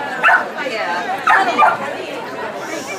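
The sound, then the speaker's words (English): A dog barks a few times in short, sharp bursts at an outdoor dog show, over a steady background murmur of people chatting. “We have plenty of dogs here. So we're going to start, because we don't want to hold the dogs up. They're eager to go.”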